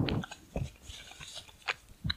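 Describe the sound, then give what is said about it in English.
An animal named Joaquin sniffs loudly, a handful of short, breathy, hissing snuffles coming in an irregular rhythm, with quieter rustling noise in between and no talking. “That's Joaquin right there sniffing his first appearance.”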